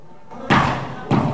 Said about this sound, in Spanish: Esos son los golpes del señor en el vidrio de la Asamblea Legislativa. De nuevo.